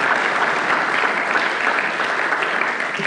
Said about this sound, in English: You can clap at that. I think so.